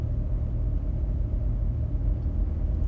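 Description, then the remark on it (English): A steady, low engine rumble fills the space, the muffled drone of a car interior while driving, constant with no voices over it. “Yeah, so you think it's easy driving with a helmet on inside a car?”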